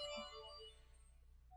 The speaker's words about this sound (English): Oh, hang on. My phone is ringing. I'm sorry.